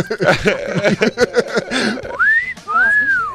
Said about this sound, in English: That guy whistles at the sight of anything silver or gold.